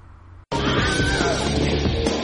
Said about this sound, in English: I was surprised there was only one Wilhelm scream in this. You'll have to explain that. Wilhelm. Wilhelm scream is like a stock scream noise. Yeah, from the like 50s or maybe earlier.